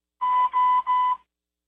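Three quick electronic beeps in a row on a group call, steady and evenly spaced, with a bright, slightly buzzy tone like an alarm clock. They are fairly loud, with no voices.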